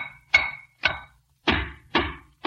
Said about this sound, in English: Well, do you have to make all that noise? Don't you realize somebody might be sleeping? At this time of day? Why, no, sis. Besides, I'm tapping these walls for secret panels.